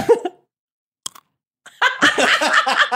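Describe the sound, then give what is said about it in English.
A single soft, muffled bite into a fortune cookie, steamed to open it so fortunes could be put inside, gives only a faint, dull crunch, then after a short pause people break into lively laughter. “That's the most unsatisfying crunch.”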